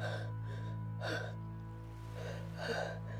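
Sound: gasping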